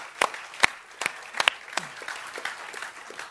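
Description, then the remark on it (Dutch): An audience claps, starting with a few sharp, scattered claps that quickly thicken into a steady patter of moderate applause with no voices over it. “If you're going to clap, let it be a good kom, one.”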